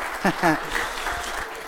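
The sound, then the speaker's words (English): A room full of people at a church service claps steadily to welcome a guest speaker, a dense, even patter of applause, while a voice briefly speaks over it near the start. “You may want to question that clapping at the end of the service today.”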